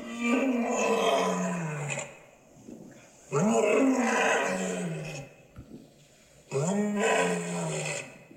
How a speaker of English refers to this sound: And the answer of the lion is to roar with all 125 decibels.